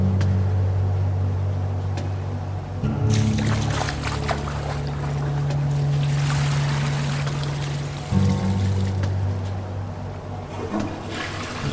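A bucket of water is poured into a toilet bowl, a loud, continuous gushing and splashing with a low churning rumble that lasts for several seconds, with no voices.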